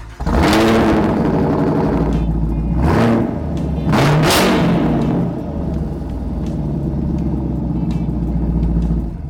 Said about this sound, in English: The rumble and rasp of this exhaust makes the car feel so powerful. The exhaust is active and can be controlled by the various drive mode switches in the center console.